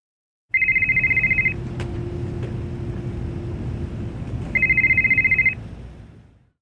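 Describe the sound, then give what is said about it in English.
A telephone rings twice, each a rapid trilling burst about a second long with a pause between, over a steady low rumble like a car engine or road noise. “It starts with a phone call.”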